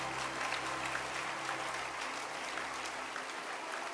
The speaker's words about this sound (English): clap your hand for this preacher.